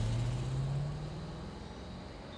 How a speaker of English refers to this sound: The car speeds up into the night.